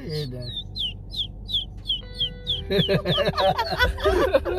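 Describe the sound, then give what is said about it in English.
A person imitates a bird, giving a steady run of about seven high, falling chirps, fairly loud, then the whistling continues as other people burst into overlapping talk and laughter. “Do it. Do the bird.”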